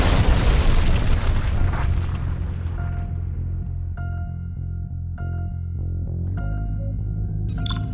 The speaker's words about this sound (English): The wavefront passed by us when the Borg ship blew.